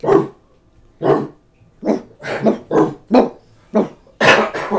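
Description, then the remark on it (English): A person imitates a dog, letting out about nine sharp, throaty barks in an uneven rhythm, loud, with short pauses between and a quick double bark at the end. “I feel like I can bark pretty well, like...”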